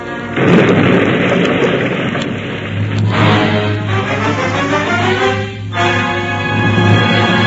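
A loud explosion bursts out, then a long roaring rumble with crackling debris and a steady low hum persists for several seconds. No voices are heard.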